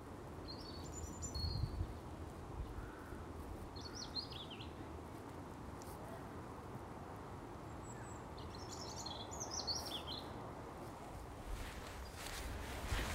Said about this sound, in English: It's still a grey day, but the birdsong has been tremendous this afternoon. Rain and I are at Chapel Common, and it's the bank holiday.